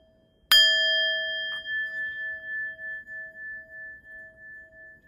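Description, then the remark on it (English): A meditation bell is struck once, its clear metallic tone ringing out and slowly fading with a gentle wavering shimmer for several seconds in otherwise quiet surroundings. “As you listen to the sound of the bell, allow your shoulders and your neck to relax.”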